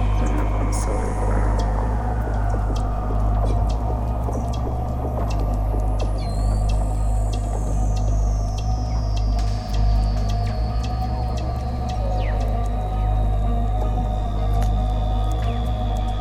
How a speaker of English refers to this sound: You can hear the ice crack like there's somebody walking behind you. It's the stress cracks, moving all the time because we're on the ocean.